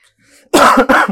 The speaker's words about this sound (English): I was really trying to resist. Yeah, coughing. I saw. It was not happening. That is not COVID, by the way.